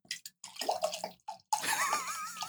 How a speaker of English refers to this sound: I'm not pouring this very well.